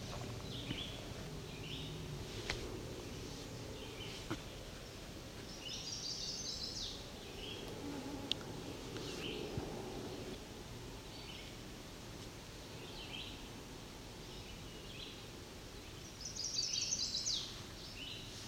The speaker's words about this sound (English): That's a chestnut-sided warbler. There he is again.